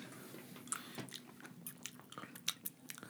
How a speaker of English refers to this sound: Chew the Big League Chew. Save me, Big League Chew. You're my only hope.